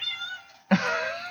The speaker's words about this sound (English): Meow. That's picking up perfectly on my end, too. Yeah, Adventure decided she's gonna climb the wall to get in here. She's like, you're running late.